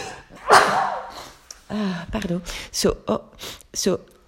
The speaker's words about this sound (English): oh, I will need to sneeze.